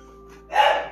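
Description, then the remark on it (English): A single short bark from Kanan, a dog, rings out midway, moderately loud over a quiet, steady background hum with no talking, in northeast Minneapolis; he is barking at his little sister Pepper underneath the coffee table. “The sound that you may hear in the background is my little boy, Kanan, barking or trying to play with.”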